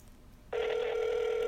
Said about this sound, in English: Take your Do Not Disturb off. Oh. I know he's awake. It's ringing.